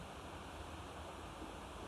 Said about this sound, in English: Neither agreeing nor disagreeing, as you would listen to that water rushing by. It has rained a great deal last night, and that river is full, rich, full of silt, running. You can't alter it. It's there running,